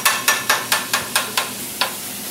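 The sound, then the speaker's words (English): Steak being chopped on a sizzling grill while cooking a cheesesteak at a restaurant in South Philadelphia, onions mixed in: a quick, steady run of six sharp metallic chops, a short pause, then one more, all over a constant sizzle. “Yeah, I'm just chopping the steak on the grill right now.”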